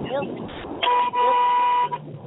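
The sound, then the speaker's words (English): A car horn blares in two sustained blasts, a short one then a longer one, loud over rumbling traffic heard through an open car window, with muffled voices talking in the background. “Can you guys close your windows in that car?”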